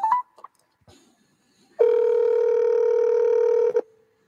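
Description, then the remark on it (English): A couple of quick keypad beeps as a phone call is placed at 9:52, then a long, steady electronic phone tone holding for about two seconds before cutting off. Clear, with no voices. “Calling.”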